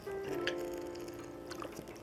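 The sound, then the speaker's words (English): A quiet sip of water, with a few soft wet clicks and a gulp over a steady low hum, and no talking. “Sorry, I had to take a sip of water.”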